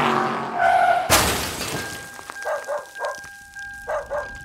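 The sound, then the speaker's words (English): A car's tires squeal as it swerves to the right, then a sudden loud crash with shattering glass, followed by several short, sharp bursts over a faint lingering tone. No one speaks. “She felt the car swerving to the right, and it dawned on her.”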